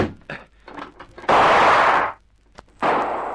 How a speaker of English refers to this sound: That shot came through. He got a gun, too? Yes, a revolver.